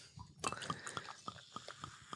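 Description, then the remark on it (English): Liquid glugs into a glass in a quick, regular series of bright, bubbly pops after a sharp clink at the start, a faint continuous pour running underneath. “And glug, glug, glug.”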